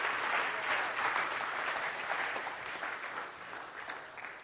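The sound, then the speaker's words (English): A church audience claps steadily for several seconds for the worship leaders, a dense wash of overlapping handclaps that stays loud throughout and eases off slightly toward the end. “How about we encourage them and give them a round of applause?”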